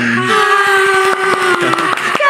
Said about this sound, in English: Let's do the applause.